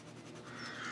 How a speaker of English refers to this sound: And you can probably hear all the birds. There are lots of crows nesting.